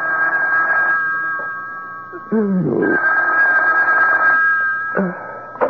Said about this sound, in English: A couple of hours later, the phone rang.